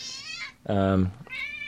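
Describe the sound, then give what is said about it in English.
A female cat meows several times, high, drawn-out cries around a louder, lower-pitched yowl in the middle, all within a couple of seconds. “My cat wants to chime in.”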